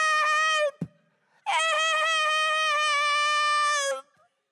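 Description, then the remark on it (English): A voice imitates a camel screaming: a short, loud, high-pitched bray, a soft thump, then one long, strained cry that wavers slightly and lasts about two and a half seconds. “And the camel screamed, hey!”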